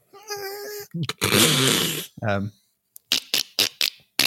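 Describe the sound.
A person's voice imitates a dolphin: a high, wavering squeal, a harsh rushing burst, a short falling whistle, then a quick series of sharp clicking pulses, fairly loud with brief gaps.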